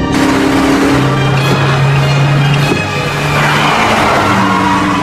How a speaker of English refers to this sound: Don't you think you're going a bit fast? We're in the middle of a car chase. What do you expect? Please, a little slower.